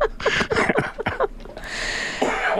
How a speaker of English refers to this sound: actually made me cough.